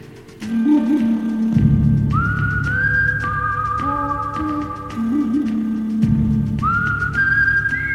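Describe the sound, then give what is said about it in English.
A loud, clear whistled melody of a Western film theme, in the original film version, plays over a low instrumental backing, with long sustained notes and a rising phrase that repeats about four seconds later. No one speaks. “And as soon as you hear that little whistle, you know what we're talking about. You know which movie it is.”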